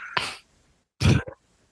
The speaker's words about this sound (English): Dude, I had to cough. It's not a laugh.